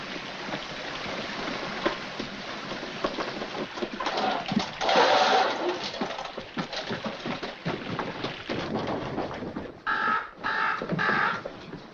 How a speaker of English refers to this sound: Why is there a bird in the bank?